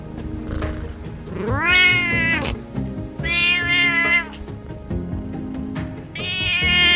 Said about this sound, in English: You've been hearing a Singapura cat. Here is a residential block in Jurong, postcode 618643.